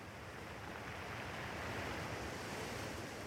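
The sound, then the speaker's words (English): Steady ocean surf washes continuously against the shore, a broad rushing roar that swells slightly midway, with a faint breath of wind and no voices. “finally takes a day off and spends some time by the ocean.”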